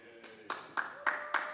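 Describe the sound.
A small group claps in a steady, even rhythm, about four sharp claps per second, fairly quietly, with faint voices murmuring and cheering underneath.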